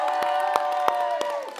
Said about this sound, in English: And so where are the youth pastors at, or youth leaders? Are you guys going to cheer for them? Come on. They're the real heroes.